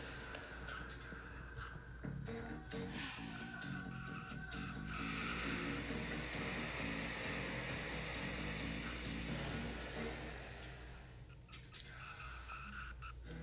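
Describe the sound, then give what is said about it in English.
Race cars roar around a track near lap 75 as the No. 50 car closes in, a steady, loud wash of engine noise with layered droning tones that shift slightly as cars pass, continuing without a break and with no voices. “And the 50 car is closed in big time. He's going to make a run here.”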